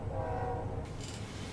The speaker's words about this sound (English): Oops, there is another train. Hold on.